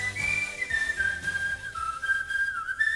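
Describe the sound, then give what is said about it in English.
A clear whistled melody from a 1981 pop song glides and steps between sustained notes, riding prominently over a steady band backing with a pulsing bass line, continuous for the whole stretch with no voices. “Let's let the whistling finish, okay?”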